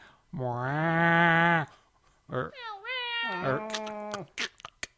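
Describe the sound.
A person's voice imitates a cat with a long, drawn-out meow, then a pause and a couple of shorter, rising-and-falling meows, ending with a few quick clicks or breaths.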